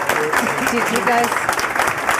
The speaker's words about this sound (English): Thank you so much for being here. Thank you. No more clapping.